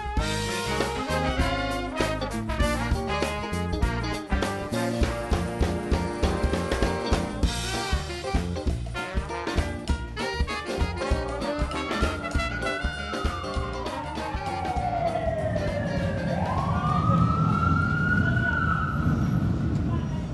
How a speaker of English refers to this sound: Two streetcar lines running between six lanes of traffic, Canal Street is the largest thoroughfare in New Orleans, bustling with people traipsing in and out of hotels, restaurants, and souvenir shops.